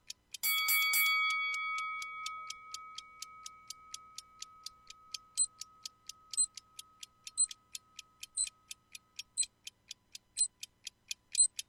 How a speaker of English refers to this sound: Sorry, I heard the bell going off. I was like, I'm being challenged or somebody's jumping in, and I thought I had to stop.